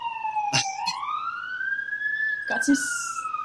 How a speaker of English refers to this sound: Oh, there's a siren in the background.